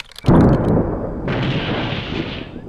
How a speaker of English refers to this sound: And maybe a little lightning hits or something. One lightning bolt coming up.